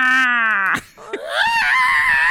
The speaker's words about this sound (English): So that was a bit much, but you know, all the cats in my neighborhood are in heat, and they it's like all fuck fucking so loud. Crazy, they dude. Love to fuck loud, cats do. They love to fuck loud.